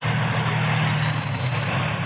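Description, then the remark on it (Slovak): A heavy garbage truck idles loudly with a steady low engine rumble, while a thin high-pitched air-brake hiss and squeal rides over it for about two seconds. “Spomínate si, keď ste boli malí, ako veľmi ste chceli byť smetiarmi, lebo ich spôsob vozenia sa na smetiarskom aute bol strašne cool?”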